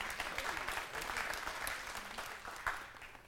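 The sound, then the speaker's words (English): A crowd of people applauding to welcome someone, a steady dense patter of many hands clapping at once, fairly loud and sustained for a few seconds with no voices on top. “You can clap too if you want to.”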